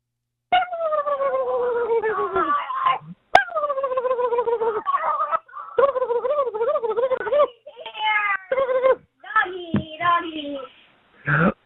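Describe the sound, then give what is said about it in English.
Turkeys gobble loudly on a voicemail message left on Thanksgiving Day, in a series of about five rapid, warbling bursts, each a rattling, descending cackle separated by brief pauses, with no talking. “I get to hear turkeys and a Roll, Tide, roll on Thanksgiving.”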